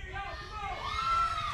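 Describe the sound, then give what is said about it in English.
A crowd at an APW wrestling match for the vacated APW Heavyweight Championship cheers and yells behind wrestler Big Tat in a dense, continuous wash of voices, with a few higher shouts rising out of the roar as it swells slightly louder midway through. “Big Tat getting the crowd behind him.”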